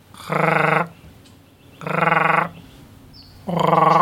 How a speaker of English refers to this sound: Spotted grass frog? Yes.